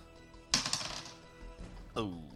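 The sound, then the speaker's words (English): Dice clatter across a hard tabletop in a quick burst of rattling clicks that taper off, followed by a brief second clack about a second later. “The dice.”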